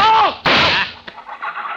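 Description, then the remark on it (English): A brief falling cry gives way to a single loud gunshot, a sharp crack whose echoing tail fades over about half a second, followed by a faint click and low rustling. “Mandel, no, do not shoot, no.”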